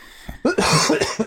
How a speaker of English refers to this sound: I am struggling to not cough my face off. My throat is literally killing me. Dying.